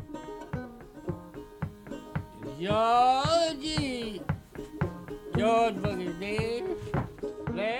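Clawhammer banjo plays a brisk, steady plucked rhythm while the banjo player stomps his foot in regular low stomps, and a voice sings in sustained phrases over the top.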